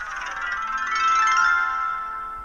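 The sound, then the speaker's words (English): A Swap Nova keyring mobile phone ringtone plays a bright, tinny electronic melody of rapid chiming notes, steady and fairly loud for a couple of seconds with no voices. “That's the world's smallest phone. Look at this. This is the Swap Nova. It's a keyring mobile phone.”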